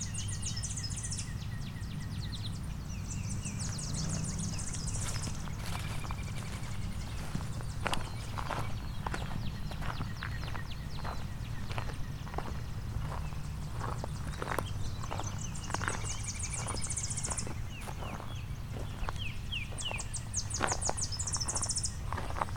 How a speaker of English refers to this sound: A lot of Tennessee warblers here.